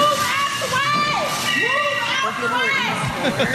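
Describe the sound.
A crowd of people in a Home Depot store screams and shouts at once as a woman drives her car into the store, high overlapping voices rising and falling continuously and loudly for the whole stretch, with excited yelling layered on top.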